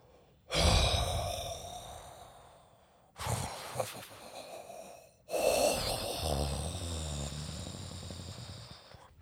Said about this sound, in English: I've always said demon serpents have the most beautiful way of breathing. Sounds like snoring. Yes. That's how they get prey to lower their guard.